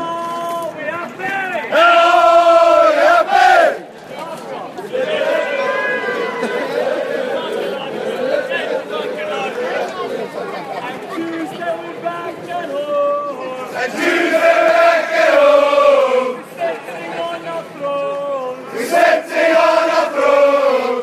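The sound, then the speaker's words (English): About 200 South African cricket fans, known as Hashim's army, sing and chant together in Block B of the North Stand at Newlands, cheering for the South African captain, loud and sustained, with voices swelling into louder rhythmic bursts over a constant murmur of cheering. “The sounds of Hashim's army, a group of about 200 fans who piled into Block B in the North Stand at Newlands to cheer for the South African captain.”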